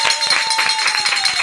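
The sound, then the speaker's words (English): A hand bell rung rapidly and steadily in a radio studio during the Quest's Spirit Drive to mark incoming callers, its quick clanging strikes blurring over a sustained bright ringing tone, loud and even for the whole stretch with no talking. “Someone grab that bell and ring it for us again.”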